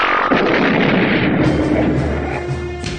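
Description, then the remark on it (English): A loud, long burp rumbles for about three seconds, rough and gravelly with a low droning tone underneath, staying strong throughout before easing slightly at the end. No one speaks. “Was that you burping? It was, but the recording wasn't on yet.”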